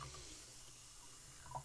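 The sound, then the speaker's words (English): Yellow soda pours steadily into wedding cups, a soft continuous fizzing splash, with a faint bright clink near the end. No one speaks. “we're pouring it into the Riley and Jay's wedding cups”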